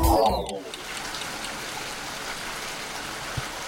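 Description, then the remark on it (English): Steady rain falls in a continuous, even hiss with a soft pattering texture, following a brief tonal flourish at the very start. No voices are heard. “Rain isn't just a soothing sound.”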